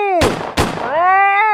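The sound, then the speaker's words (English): Two sharp gunshots crack in quick succession, fired at a monkey, Mr. Gatsby, about a third of a second apart, over a loud, high-pitched wailing cry that dips and then rises again after the shots. “You took a bullet for a monkey?”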